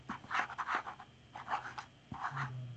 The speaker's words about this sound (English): starts drawing an owl in green. You kind of see as she holds her paper up and kind of does this and like kind of looks at you for a second and then goes back to drawing.